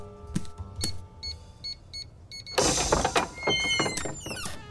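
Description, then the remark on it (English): A few short electronic beeps and tones, then a doggy door flap at the end of a fence bursts open with a loud, rattling clatter and swishing rush as a visitor pushes through. “But yes, you'll find our secret doggy door just at the end of the fence.”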